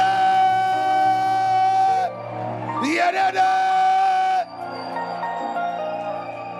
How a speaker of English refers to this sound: Clap your hands, stand your feet, and give the Lord a shout of praise.